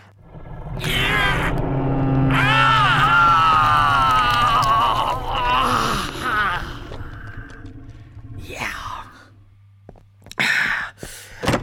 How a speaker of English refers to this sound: I'm fine. Just, gotta clear my throat.